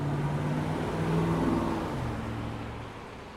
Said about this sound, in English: A red Tesla, a man on a motorcycle, dressed in those ugly but I guess useful neon yellow vests, a VW RV, a Hyundai H1 with a box on the roof, I love those, and someone honking their horn.